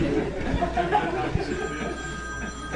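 A telephone rings with a steady electronic trill over a low, busy background murmur, moderately loud.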